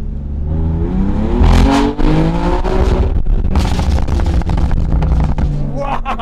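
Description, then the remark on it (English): A car engine revs hard and loud, its pitch climbing and surging through several throttle bursts before easing off, with a rough, roaring tone throughout. “Car, yeah? Like, show them how the car bangs.”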